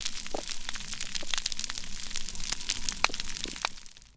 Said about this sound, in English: The first one is the crackling sound made by snapping shrimp.